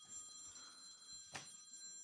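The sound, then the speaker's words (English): A telephone rings faintly in the background, a steady bright tone held across the moment, with one sharp click partway through and no voices. “Can't silence our phones.”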